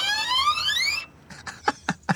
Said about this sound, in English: That was supposed to be a psycho, screeching, stabby sound, but we didn't have the budget.